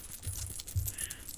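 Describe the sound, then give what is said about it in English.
Loose coins jingle and clink together in a trouser pocket for a guess-the-amount game, a brief metallic rustle shaken a couple of times with a soft muffled thump underneath. “How much money is in this pocket?”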